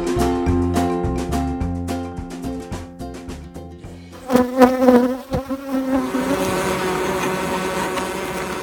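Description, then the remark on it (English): A dense swarm of thousands of honeybees drones continuously right outside a beekeeper's house, a thick layered buzz with shifting pitches that swells and grows rougher partway through, fairly loud with no voices. “Those are the sounds of thousands and thousands of bees right outside my house.”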